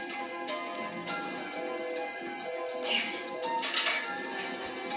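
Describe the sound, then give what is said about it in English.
A telephone rings with a bright, electronic melodic tone, repeating steadily for about five seconds at moderate volume, with no one talking. “All right, because he just took the phone off the hook.”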